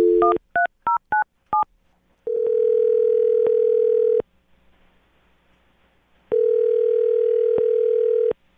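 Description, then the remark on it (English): A quick series of about six touch-tone beeps as a number is dialed, followed by two long, steady ringing tones separated by a pause of silence. Clear, with no voices. “I'm about to get her on the phone and find out if the cat allergy is real, okay?”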